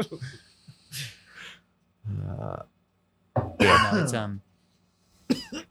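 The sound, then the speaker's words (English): Loud bursts of coughing and throat clearing in several separate fits, some harsh and rattly, with brief gaps of quiet between them and no talking. “You sound like you got the same cough I do.”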